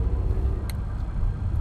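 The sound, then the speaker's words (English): A car engine rumbles low and steady from inside the vehicle, a heavy droning hum as it slowly and sluggishly pulls away after the traffic light turns green, with a brief faint click partway through and no one speaking. “Oh my gosh, my mom's car literally does not take off.”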